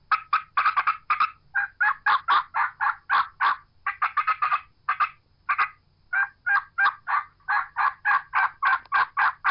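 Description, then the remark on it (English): A wild turkey call mimics an aggravated hen challenging another hen, cutting and excited yelping: rapid, sharp, raspy notes in fast irregular bursts, loud, running continuously with no voices. “There's another hen that's challenged her, or she's challenging another hen. She's going to cut an excited yelp.”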